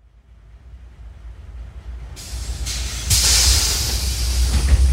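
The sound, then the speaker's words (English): Low engine rumble inside a city bus on the 733 line heading west on Venice Boulevard, early afternoon in spring 2017, builds steadily. Then a sharp hiss of air brakes bursts in and surges louder, lingering as a loud, breathy rush over the drone. “It's spring 2017, and I'm on the 733 bus line heading west on Venice Boulevard.”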